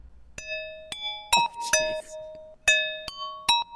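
A dry synth bell preset, with the Valhalla Vintage Verb reverb, ping pong delay and EQ switched off, plays a slow melody of about seven bright, ringing notes with sharp attacks and short tails. A brief burst of noisy, percussive texture sits under the middle notes.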